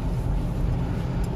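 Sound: loud car passing by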